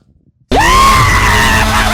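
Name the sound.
person screaming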